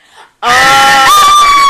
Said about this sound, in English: We said no dance screaming!